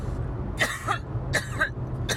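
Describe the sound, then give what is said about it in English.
Two harsh, rasping coughs about a second apart, over a steady low engine rumble like the inside of a moving vehicle. “So there is the said cough, folks.”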